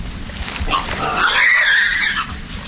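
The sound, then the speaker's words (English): A large male wild boar, about 320–330 pounds, gives a harsh, rising squeal-grunt lasting about two seconds as it challenges another boar. The sound is fairly loud, over low rumbling background noise. “See, he's challenging that other boar right there.”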